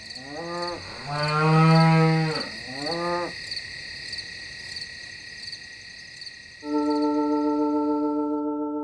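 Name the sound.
cows mooing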